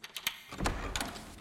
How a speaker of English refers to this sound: No, I think it was the door. Yes, yes! Someone opened the door from the outside.